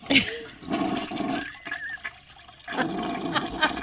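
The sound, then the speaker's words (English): A toilet flushes, a loud rushing gush of water that briefly eases in the middle before surging again as the bowl drains and refills. “Flushing the spicy pickles.”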